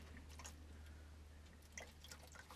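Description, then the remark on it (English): Faint, irregular liquid gurgles and glugs from a water jug being drunk from, a jug with no hole poked in it, over a low steady hum, with no talking. “You gotta just gurgle. Your water jug.”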